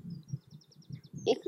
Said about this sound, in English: What's that noise? Oh, what's that? Perhaps a chaffinch or a song thrush.